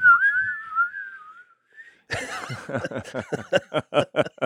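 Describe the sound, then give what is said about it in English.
A group of people start whistling: a single wavering whistle glides up and down for about a second and a half, then gives way to a burst of rhythmic, breathy laughter from a few people. “And everybody started whistling.”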